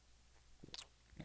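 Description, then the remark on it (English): A faint, wet slurping sip of a drink: a short hissy slurp followed a moment later by a soft low gulp, with no talking. “Anyway, another sip.”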